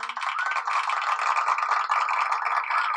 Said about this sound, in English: That applause.